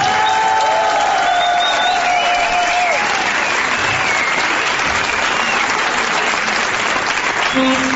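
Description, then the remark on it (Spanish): A large audience claps loudly and continuously for the whole stretch, a dense, steady wash of applause with a few thin whistle-like tones drifting over it early on, welcoming a trumpeter onto the stage. “Señoras, señores, extendemos el aplauso para recibir en este escenario a la dorada trompeta de ….”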